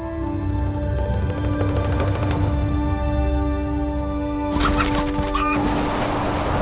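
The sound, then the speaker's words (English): A strong rooster named Macho clucks with low, throaty calls over a steady background hum, with a short burst of sharper, scratchy clucking near the end. “His name is Macho. Like me. Very strong rooster.”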